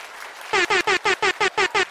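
hand clapping

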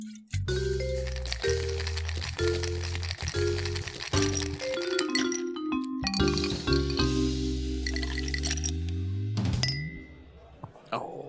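glasses clinking

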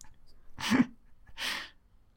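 nose blowing

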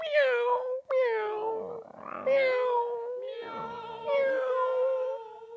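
cat meowing

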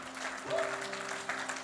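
church audience clapping

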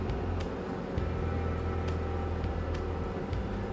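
bus engine

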